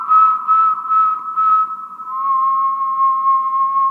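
A sustained whistle rings inside an empty former railroad water tank on a hilltop in Rangeley: a steady mid-pitched tone pulsing rhythmically at first, then joined by a second, slightly lower tone as the echo lingers.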